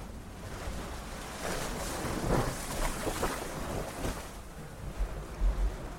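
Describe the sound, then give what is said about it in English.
Low, rumbling surges of ocean waves roll and wash against rock columns, echoing in the back of a sea cave chamber on the island of Staffa, with a hollow, booming echo; broad noisy swells rise and fall every few seconds without any voices. “I let my feet dangle over the edge and listen to the sound of waves echoing in the back of the chamber.”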